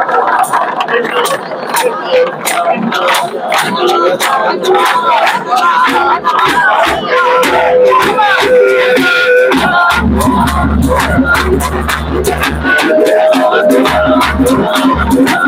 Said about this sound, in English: Clap your hands and pray. Clap your hands, clap your hands.